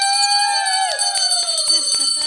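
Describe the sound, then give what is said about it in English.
A hand bell is rung rapidly and loudly by a guest. Its clapper strikes again and again while bright metallic tones ring on continuously underneath, with a faint voice rising in the background. “Okay, so now you get to ring the bell.”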